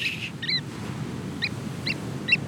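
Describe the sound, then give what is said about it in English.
Shorebirds on a sandy beach give short, sharp double-note calls, repeated four or five times at irregular intervals, clear over a steady low rumble of big crashing waves, as the birds run fast on long, thin legs where the water laps onto the sand. “Right now, where the water is lapping up onto the sand, are some very busy birds.”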